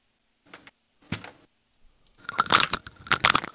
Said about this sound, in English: Are you eating chips into the fucking mic?